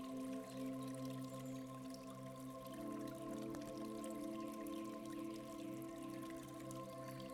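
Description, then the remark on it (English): Soft, continuous trickling water from a small waterfall along a nature path, faint, distant and steady, with a low sustained tonal drone underneath throughout. No voices. “In the distance, you hear the sound of gentle trickling water.”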